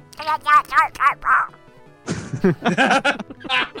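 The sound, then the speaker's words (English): A person does a cartoon duck voice impression, made by air coming through the lip: squawky, garbled, buzzing quack-like babble in two fairly loud bursts separated by a brief pause, with no clear words. “Can we hear your Donald Duck impression?”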